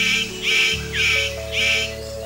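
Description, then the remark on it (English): A superb bird of paradise mating call, made to attract a female: three loud, harsh, buzzy bursts in an even rhythm, over a steady low hum of background tones. “The superb bird of paradise calls to attract a female.”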